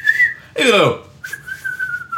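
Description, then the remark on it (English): A loud human whistle: a steady high note, a brief harsh downward-sweeping burst, then a long sustained whistle held to the end. “it's a situation where, you know what I mean, it calls for the NFL whistle, then sometimes they don't really hold you accountable for that, right?”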